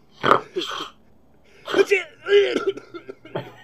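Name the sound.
coughing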